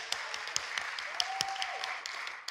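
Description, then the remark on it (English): An audience claps together to welcome a speaker, a steady, dense patter of overlapping claps, moderately loud and continuous throughout, with no voices rising above the applause. “We don't usually clap, but, you know, it's really nice.”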